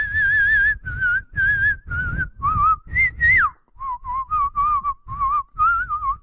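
Someone whistles a bright, bouncy tune up close, a run of short clear notes in a steady rhythm with tiny gaps, the pitch rising and dipping playfully. No one talks.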